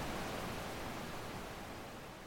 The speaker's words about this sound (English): You're listening to Perfect White Noise.